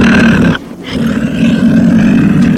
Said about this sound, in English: We're listening to the sounds of a mountain lion. Fully grown, these animals can weigh over 100 pounds, making them formidable predators, even for an adult human.